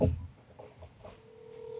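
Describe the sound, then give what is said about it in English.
A steady electronic ringback tone hums through an earpiece on an outgoing call, starting after a brief low thump and a few muffled clicks, moderately loud and holding to the end. “It's ringing. It's Holy ringing.”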